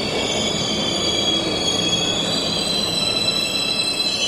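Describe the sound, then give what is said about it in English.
A New York subway train heading north past Central Park towards Harlem rumbles steadily along the rails, its wheels letting out a continuous high-pitched squeal over the dense roar, loud throughout, with no voices. “Say, take a subway north, past Central Park, past the Uppies, past Woody Allen's Upper East Side, past 110th Street and into Harlem.”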